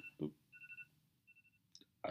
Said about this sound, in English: My phone was on silent, y'all, but I forgot I had set that alarm, so excuse that.